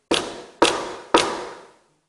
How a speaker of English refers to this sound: I think I heard a knock at the back there.